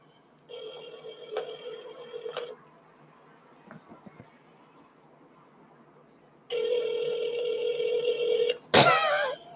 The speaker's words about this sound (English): Hold on, I gotta make a phone call, y'all